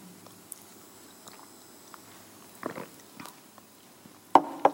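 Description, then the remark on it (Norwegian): Quiet, wet mouth sounds of someone sipping a little water: a few soft slurps and swallows, then a sharper clink and gulp near the end, with no talking. “Litt vann.”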